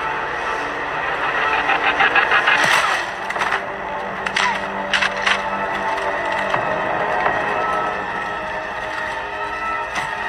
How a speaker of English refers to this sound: I'm just typing a bunch of shit. Anything? Not yet. Making keyboard clicking sounds.